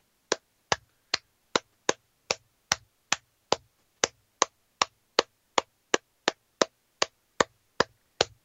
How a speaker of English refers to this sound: The only thing better than Jason Mitten is the man clapping for him right now.